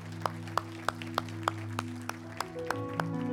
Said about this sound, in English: thank all of those folks who worked so hard the last couple of weeks on our landscaping project. And that's women and men. And they deserve a round of applause. Amen.